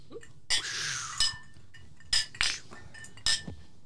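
Glasses clink together in a toast among about five people at a producer's table, five or so bright, ringing chimes spaced irregularly over a few seconds, fairly sharp, with a faint low murmur underneath and no clear speech.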